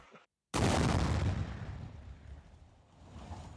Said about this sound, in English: I'm also doing it, and you're gonna hear the door slam on my way out, because I'm intense.